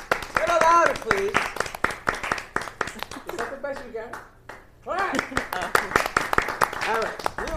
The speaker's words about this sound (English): We are going to open up with the clap. Ooh, that didn't sound good.